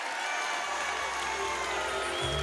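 Steady, dense applause from a church audience giving a round of applause to Jesus Christ, a continuous wash of many hands clapping at an even loudness throughout, with a faint murmur of crowd voices underneath.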